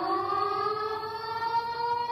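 A loud, sustained alarm siren wails continuously, its rich harmonic tone holding steady with a slight rising sweep in pitch. No voices are heard.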